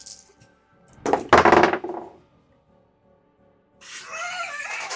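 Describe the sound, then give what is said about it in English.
A short clatter of dice tumbling and knocking across a hard tabletop for about a second, then quiet before a voice starts up near the end. “Prove that his dice work.”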